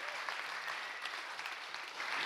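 A church audience claps steadily, a dense, even wash of many hands applauding at a fairly loud, constant level with no voices standing out.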